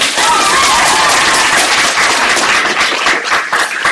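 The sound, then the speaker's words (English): A crowd applauds with dense, steady clapping that fills the whole stretch, loud, with a faint murmur of voices mixed into the noise. “Clap yourself.”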